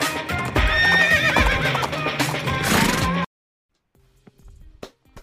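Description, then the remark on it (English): A loud horse whinny fills the first few seconds, then cuts to near silence before a few sparse hoof clops sound out, separated by pauses. “The Four Horsemen ride four horses all at one time. Giddy up.”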